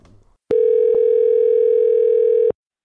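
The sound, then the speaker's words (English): A single steady telephone ringing tone sounds for about two seconds, loud, like an outgoing call ringing through the line, with no talking. “Okay, now let's give Christine Horn a phone call and let's see what she has to offer you.”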